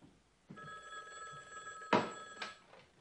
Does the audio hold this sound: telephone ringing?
yes